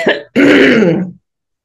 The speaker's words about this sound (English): I just want to cough one more time.